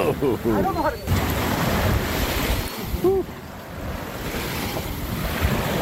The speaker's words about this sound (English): Yeah, it was chilly and the waves were crashing, but I loved it. I loved being on a tall ship.